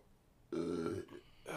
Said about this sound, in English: I've got chili burps right now.